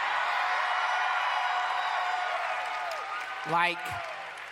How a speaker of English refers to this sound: You shouldn't cheer yet. You should wait for the end.